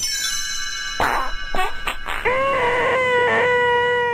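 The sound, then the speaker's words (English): Chimes ring with bright, sustained overlapping tones, struck again a few times and shimmering as they ring on. A fresh strike partway through brings a slightly wavering ring that holds to the end, with no talking. “You will know it is time to turn the picture when you hear the chimes ring like this.”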